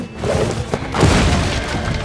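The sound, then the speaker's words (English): A heavy wooden front door bursts open with a booming crash as Zorro swings over a crowd of soldiers and crashes through it, with splintering timber and a deep thud, followed by a rumbling, crackling tail of breaking debris. No voices. “He swung over the crowd of soldiers, crashing through the front door.”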